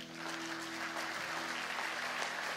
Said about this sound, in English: I think we should give them a clap.